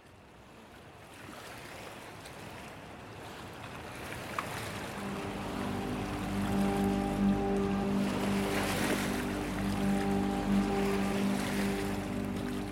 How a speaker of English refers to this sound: It's inky and oily at night. The water is black against the lights and it's almost viscous, the way it kind of slops over things. It does take on a really different quality at night